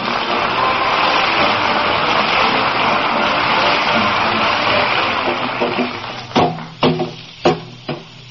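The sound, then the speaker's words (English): A broad, steady hiss fills the first six seconds, then fades as four sharp, hollow hammer knocks on an old car's body ring out one by one, loud, spaced about half a second apart, as someone knocks dents out of the car in a backyard. “will you put that hammer down? There's enough dents in that car already. I ain't knocking dents in it.”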